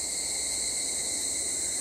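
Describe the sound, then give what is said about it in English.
A steady, droning chorus of cicadas and crickets from a park fills the air, a continuous high buzz with faint chirping layered over it, evenly loud throughout with no voices. “The low hum of cicadas and chime of the crickets from the park behind me give me more of an answer than you.”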